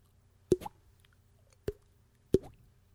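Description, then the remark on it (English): Three dry water-drop plops land about a second apart, each a sharp pop with a quick rising bloop after it, over a faint low hum and no trailing echo. “in the background, you can hear like the slight dripping echoing”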